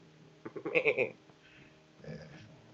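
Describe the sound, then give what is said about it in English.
A human voice mimics a goat's bleating sigh, a quavering series of pulses for about half a second, then trails into a softer, sighing second bleat, moderately loud. “If you ever heard a goat bleat sigh, it bleat sighs.”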